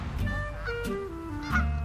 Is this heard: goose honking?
yes